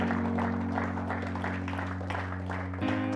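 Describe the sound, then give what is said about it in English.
An audience claps steadily throughout for people coming forward to the front, a dense wash of many hands over a sustained keyboard chord that shifts to a new chord just before the end. “Give them a round of applause as they begin to make their way this morning.”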